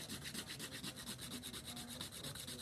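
A fingernail is filed by hand in quick, steady back-and-forth strokes, a dry rasping scrape repeating rapidly and evenly, fairly quiet, with no one speaking.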